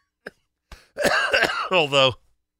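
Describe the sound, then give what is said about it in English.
A person with a cold clears their throat and coughs several times, rough bursts in quick succession, ending in a short voiced, groaning rasp. “although it didn't seem to solve my health issues with this cold and cough, but all right, what can I do?”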